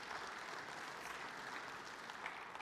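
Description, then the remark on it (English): An audience applauds steadily for a few seconds, a dense, even wash of many hands clapping with no distinct cheers or voices rising above it, after being thanked for raising special offerings for hurricane relief in the Bahamas. “See, we always cheer a little less when it's for ourselves.”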